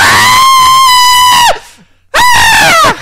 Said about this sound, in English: So he's letting out a bray scream of appreciation.